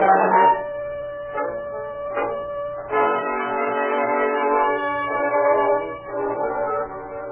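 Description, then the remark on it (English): A steam train rolls through a sleeping town at night with a low mechanical rumble underneath, sounding several loud, sustained whistle blasts that overlap and echo. No one speaks. “Through the long night, as train after train puffed through the sleeping town, Foley and his men checked every car for suspects, hoping that their quarry had not eluded the nest thrown out for him.”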